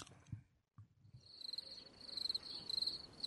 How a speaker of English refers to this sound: please put crickets in there.